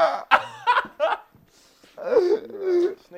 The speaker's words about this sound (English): Cough with your tongue out.